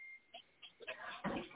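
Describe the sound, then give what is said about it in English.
A faint, short electronic ding like a phone's text message alert, followed by a few soft rustling knocks and a brief louder burst of handling noise. “I just want to hear my text ding on your phone. I had to cut my ringer off my other phone.”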